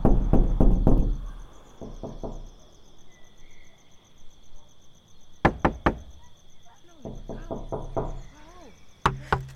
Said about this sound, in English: record yourself knocking on the door, send it through and I'll embed it into the work.